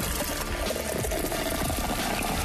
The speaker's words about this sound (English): It's a... can of cola being poured into a glass and somebody chugging it. No, that's a beer tap. That's a beer tap.